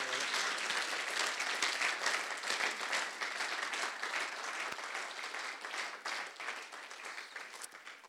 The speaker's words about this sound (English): So let's give them a round of applause as well.